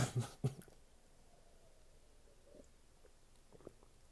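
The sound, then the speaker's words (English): A brief slurp of someone sipping a drink, with a few wet mouth sounds at the start, then near-silence broken by faint swallowing and small clicks. “I'm gonna take a sip on that one.”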